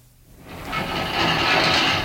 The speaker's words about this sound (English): Balanced by some sort of counterweight, I expect. You see, look here, look. Yes. The entire stone pivots aside.